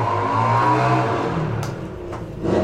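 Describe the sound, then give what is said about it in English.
A car engine outside hums steadily, its pitch rising and falling as it revs, with a couple of brief clunks and a surge of noise near the end. No one speaks. “Oh, and an at 20 for the car outside.”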